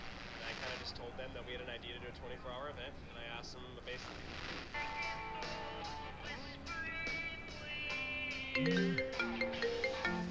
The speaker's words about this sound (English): When I saw who was calling, I froze. I looked at my phone like a bomb that was about to go off.